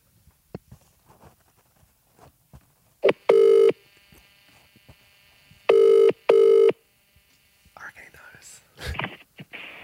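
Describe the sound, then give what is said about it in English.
An outgoing phone call rings three times through a handset speaker, with steady tonal ring bursts separated by quiet gaps, amid soft rustling and faint whispering. “But that's like legit ringing because that was a different amount of rings, hey?”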